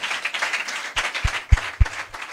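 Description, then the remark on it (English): A crowd of people claps together for the Lord in a dense, continuous patter, with a few heavier low thumps landing in a loose beat partway through. “Oh, give the Lord a clap.”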